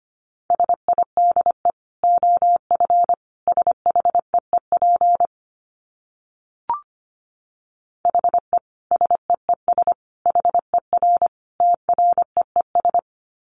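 Morse code sent at 25 words per minute: a single mid-pitched tone keyed in rapid dots and dashes, in two runs separated by a pause broken by one brief click.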